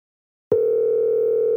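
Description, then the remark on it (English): A loud, steady phone ringing tone starts abruptly after a brief silence and holds one even pitch, like an outgoing call ringing on the line. No voices are heard. “Oh, it's a loud ring.”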